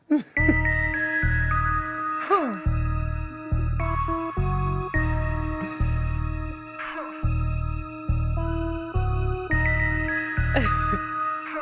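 A party song plays loudly and continuously, driven by heavy, pulsing bass hits in a steady rhythm beneath bright, sustained synth melody lines, with no one talking over it.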